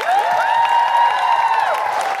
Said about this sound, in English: a big round of applause for Catherine Bohart, everybody.